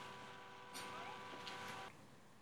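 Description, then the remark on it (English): A car horn blares in one long, unbroken tone just outside a window, fairly faint, with a couple of brief hissing bursts of noise over it. “Ten minutes of like a car horn. It felt like 10 minutes. Just blaring outside, just right outside the window.”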